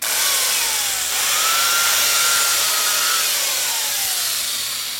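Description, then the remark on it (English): A power tool grinds steadily through ice, cutting 300-pound ice blocks down in preparation for carving cranes, a loud continuous hissing, rasping whine with slowly sliding tones, running unbroken for about five seconds with no voices. “I'm just cutting the blocks down right now so we can get prepared”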